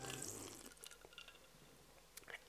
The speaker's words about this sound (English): I keep picking up this cup and now sipping it. Hold up.